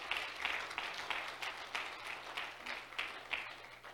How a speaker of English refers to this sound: Come on, how many's ever needed the hand of the Lord in your life? Clap your hands if you have.